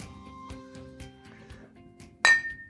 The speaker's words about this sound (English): Woo! Hear that clink.